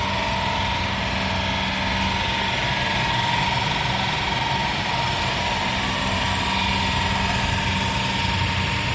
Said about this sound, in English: Yeah, that is a Kango hammer that was going late last night.